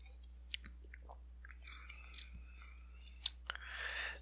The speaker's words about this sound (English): Definitely a Four Loko. That's for sure. That undeniable taste. Let's see. Let's give it a sip from the can.